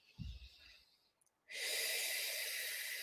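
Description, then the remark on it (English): A breath: a short, rough intake followed by a brief pause, then a long, loud, airy exhale that hisses steadily to the end. No one speaks. “So inner eye, everything this experience brings up for me, breathing in, breathing out.”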